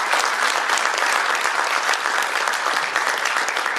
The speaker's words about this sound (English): And so, ladies and gentlemen, before the Q&A, let's give a big round of applause to this accomplished person.